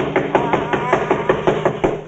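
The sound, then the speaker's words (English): Rapid, steady knocking on a wooden door, about a dozen firm, hollow raps in quick succession, evenly spaced and fairly loud, with no one speaking over them. “Disturb is right one side, Lady Gwendolyn. I'll do the knocking.”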